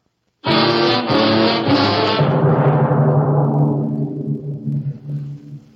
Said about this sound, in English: Elsa knows... but she sits in the car staring straight ahead. The motor hums in a vast silence.